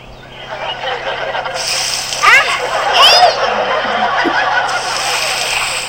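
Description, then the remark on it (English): Water splashes onto a person in a steady, noisy rush, like being doused, soaking their hair and shirt, lasting several seconds with brief high-pitched vocal squeals and giggles mixed in. “My hair, my shirt. I'm soaked.”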